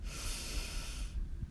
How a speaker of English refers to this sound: We'll breathe in through our nose, hold and relax with a loud sigh, and let's begin. Breathing in deeply.